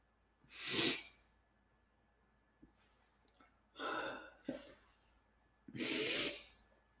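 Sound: sniffling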